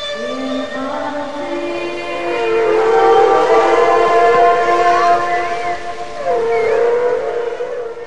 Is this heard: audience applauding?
no